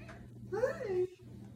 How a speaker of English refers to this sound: Hi. Did you hear the meowing?